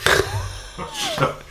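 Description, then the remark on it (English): A chair shifting with a couple of short, fart-like squeaks, each a thin whining tone that slides in pitch, over a low rumbling scrape. “No, I did move this chair.”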